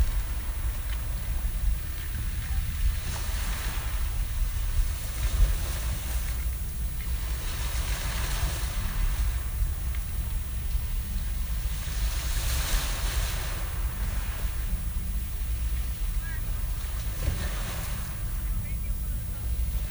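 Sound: ocean waves and surf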